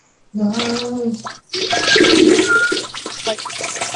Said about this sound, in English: Are you guys flushing your drugs down the toilet?